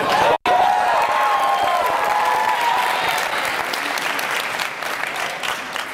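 A crowd applauds loudly and steadily for about six seconds, with a burst of cheering and whistling near the start, after which the clapping carries on and gradually thins slightly.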